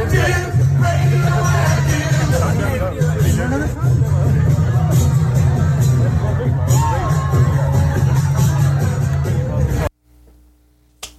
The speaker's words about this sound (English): Obviously, from the video, the crowd going crazy. They and that joint jumping off trash cans.